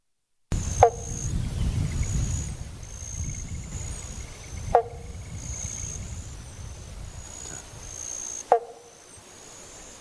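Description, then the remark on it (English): Three short, plucky 'bonk' calls of a banjo frog, also called the pobble bonk, evenly spaced about four seconds apart, over a steady high insect trill and a low rumbling background. “I've tried to send the YouTube links to see what the pobble bonk sounds like.”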